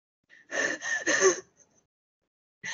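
A loud, raspy gasp follows a swallow, a couple of harsh, breathy exhales bunched together over about a second, then quiet before another breath begins at the very end.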